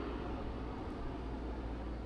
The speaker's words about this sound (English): Yeah. We've got military planes flying overhead. They're on to us.